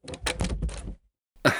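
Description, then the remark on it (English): A door being closed: a second or so of clattering, rattling handling, a brief silence, then a single solid shut with a low thud. No one speaks. “I'm sorry, folks, just let me close this door.”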